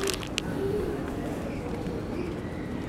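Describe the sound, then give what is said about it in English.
A large flock of pigeons coo softly, a low steady murmur of overlapping calls with a couple of brief sharp clicks near the start and a faint continuous outdoor rumble underneath. “I think all these pigeons have crashed my phone.”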